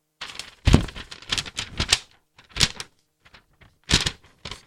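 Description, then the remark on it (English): A pen scratches across paper in a run of quick strokes, bursts of scratching broken by short pauses as a whole name is written out straight through without lifting the pen. “You have to write your name on a piece of paper straight through, you know, all the letters without lifting your pen.”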